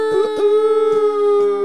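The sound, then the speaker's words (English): A person imitates a wolf howl, holding one long, steady, fairly loud vocal tone for nearly two seconds. Short breathy or clattering bursts punctuate it. “Hey, listen, the wolf we had on last week was way better.”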